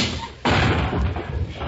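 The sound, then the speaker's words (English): After a brief quiet moment, a loud crash erupts as someone smashes through a glass window, followed by a continuing noisy clatter of breaking pieces and debris. “When'd you get the new glass door? Glass door? Why, you just came in through the window.”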